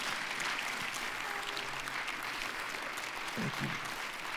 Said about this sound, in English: So if you would you do me a favor, and let's give them a round of applause and just tell them how much we appreciate them.